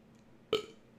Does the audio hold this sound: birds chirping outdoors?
no